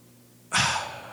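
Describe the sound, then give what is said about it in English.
A voice imitates the single labored, gasping breath of a man near death: a sudden loud, breathy intake that starts abruptly after a quiet moment and then slowly trails off, with no talking. “and that's how he was breathing.”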